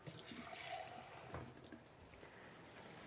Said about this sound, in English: So fill this up about a quarter of the way with water and throw that right in there.